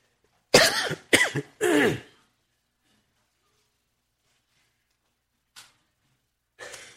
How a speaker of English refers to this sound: Well, if you'll excuse my cough today, it seems to occur every time I lift my voice.